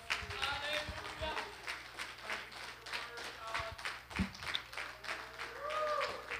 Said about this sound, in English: Oh, someone clap your hands right now to the Lord.